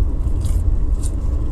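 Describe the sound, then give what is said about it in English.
A steady, loud low-pitched rumble fills a moving car's interior while driving the back road from Aztec to Farmington at 3 o'clock, the engine and road drone continuous throughout, with a couple of brief faint hissy scrapes on top and no one talking. “Right now, I'm in the fucking car, so I'm pretty sure the audio is shit.”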